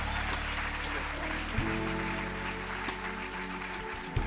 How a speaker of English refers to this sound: Come on, give your pastors a round of applause.